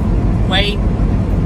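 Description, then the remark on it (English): Steady road noise from a truck cruising on the highway at night, driving down through Maine after the rain has stopped, a constant low rumble with a brief higher-pitched squeal rising over it midway. “It's a beautiful night here for driving down through Maine.”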